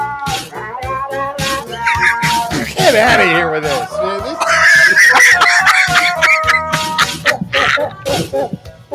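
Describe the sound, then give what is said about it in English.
A cat hacking up a hairball, with loud, strained yowls and gagging retches rising and falling for several seconds, while a person speaks briefly over it. “This is a cat throwing up hairballs.”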